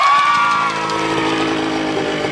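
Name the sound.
motorcycle engine revving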